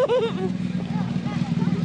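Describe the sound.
A low, steady motorbike engine drones close by, with a voice talking over it at the start and the rumble continuing underneath throughout.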